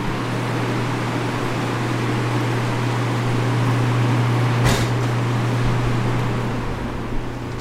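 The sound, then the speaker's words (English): A steady indoor drone of machinery hum and ventilation hiss fills a quiet office space in Ottawa, with one brief click or knock near the middle and no voices. “I love the sounds of an office, the hums and the clicks and the echoes.”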